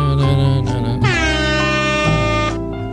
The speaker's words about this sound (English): We need a little air horn.